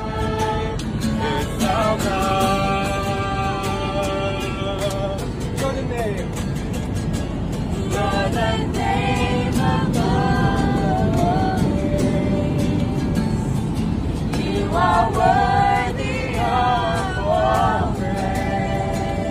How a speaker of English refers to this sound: This is literally just people who are singing about Jesus on a plane. And here's what the video sounded like.